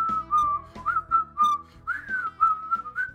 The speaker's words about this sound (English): Why are you whistling?